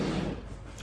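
A woman goes across the room and pushes a door shut: a soft, muffled thud and sliding rumble followed by a faint click, fairly quiet and heard alone without any talking.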